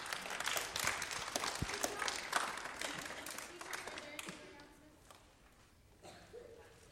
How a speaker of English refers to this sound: Congratulations. Give them one more round of applause.